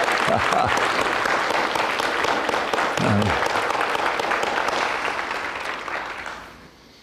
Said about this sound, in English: Amen. A little applause here. There we go.